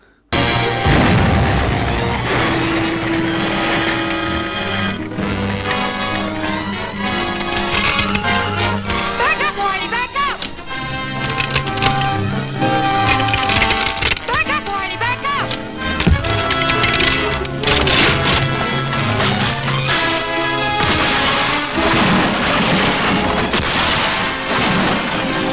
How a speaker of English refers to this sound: Yeah, the bridge blows, and that car just plummets into the gorge.